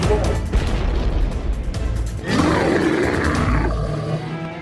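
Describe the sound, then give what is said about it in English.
A loud, deep big-cat-like roar from a cat trying to break down a door rumbles out in two long, raspy bursts, the second swelling stronger and harsher before trailing off into a low growl. “get rid of the cat, or help us”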